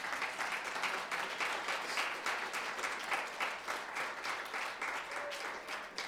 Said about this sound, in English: Come on, you can clap better than that.